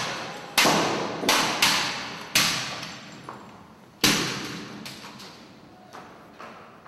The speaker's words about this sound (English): until suddenly the two dancers alongside him pull out sledgehammers and smash the car into tiny pieces.